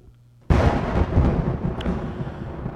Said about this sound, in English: Oh, yeah, thunder. Got it.